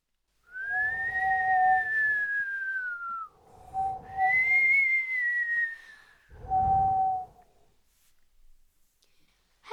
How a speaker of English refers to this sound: Well, after a while, he heard another noise. A sort of whistling noise coming across the sea from the distance.